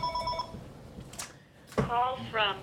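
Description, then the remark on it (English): A telephone rings in short, bright electronic bursts, fairly loud, with a pause between rings and some voice-like sound mixed in around them; an incoming call from an unassigned number. “I didn't unplug the phone.”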